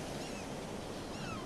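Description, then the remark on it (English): Ocean waves wash onto a beach in a steady, continuous rush of surf, with no clear individual breaks and no voices, just the full, even hiss of water. “I sit on the beach and watch my daughters chase a surf into the ocean.”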